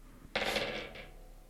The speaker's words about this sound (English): It feels weird that you can hear the dice sound for me and not for you, but anyway. Oh, that's because mine's on a carpet.